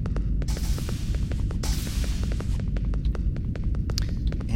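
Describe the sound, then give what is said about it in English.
An echoey hallway ambience: a heavy, throbbing low hum fills the space while sharp clicks or footfalls ring out steadily, with occasional hissy swells and no voices. “There's another door and another very echoey hallway.”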